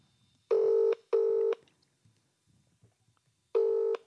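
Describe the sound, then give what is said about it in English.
A telephone ringing tone on the line as a call is placed to someone's mother: two loud, buzzy pulses in quick succession, a pause of about two seconds, then the next pulse begins. Nobody speaks. “We're now ringing Gemma's mum on the pod to find out why she can't say things.”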